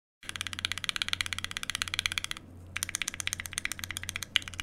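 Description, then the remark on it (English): Unfilmed tangerine mechanical keyboard switches clack in a fast, steady stream of sharp clicks, pausing briefly midway before resuming, with a low steady hum underneath and no talking. “Okay, so this is a tangerine unfilmed versus an unfilmed original aspiration.”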